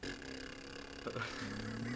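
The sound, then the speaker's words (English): A voice imitates a small car engine purr with buzzing lips: a steady, low, rumbling drone that swells louder partway through and holds for about two seconds, with no talking. “But then he'd do this other kind of thing with his lips where it'd be like.”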